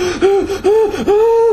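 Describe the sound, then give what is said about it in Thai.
A voice imitates quick gasping breaths, three sharp voiced gasps in a row with brief pauses between, fairly loud, with no other talking, mimicking the quick breathing of the film character Khun Boonlhok. “แล้วการหายใจนะฮะสังเกตการหายใจของเราเนี่ยระหว่างดูไปด้วยจะตรงกับคุณบุญหลอกตลอดถ้าคุณบุญหลอกหายใจที”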